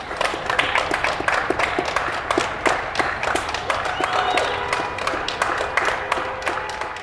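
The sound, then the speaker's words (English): Neighbours clapping outdoors in steady, scattered applause in appreciation of the National Health Service and key workers, with faint whistles or cheers drifting in and a general murmur of neighbourhood ambience. “everybody goes outside and clap in appreciation of our National Health Service, but all the key workers”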